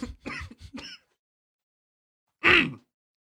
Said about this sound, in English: I'm sorry about that. Hey, excuse me. I just coughed on my water that I wasn't drinking.